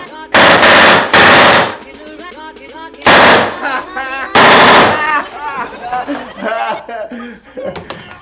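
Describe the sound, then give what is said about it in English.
Four loud bursts of rapid machine-gun fire, each about half a second long, ring out in quick succession, with a man's voice talking and chuckling in the gaps between them. “I'm going to give you to the count of 10 to get your ugly, yellow, no good keister off my property before I pump your guts full of lead.”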